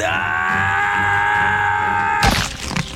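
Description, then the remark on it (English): A loud, drawn-out performed scream of a character being wrapped by tentacles as a house crushes into itself holds steady for about two seconds, then breaks off abruptly into a burst of crashing, clattering noise. “there's a moment where we see Randall being wrapped around these tentacles as the room closes in on him as well, and Randall lets out a scream.”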